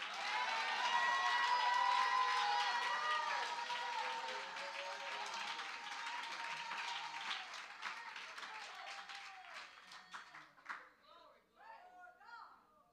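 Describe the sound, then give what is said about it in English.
A crowd claps and shouts together, dense applause mixed with cheering voices that stays loud for several seconds, then thins into scattered claps and calls before fading. “If you can still sing, clap your hands and shout.”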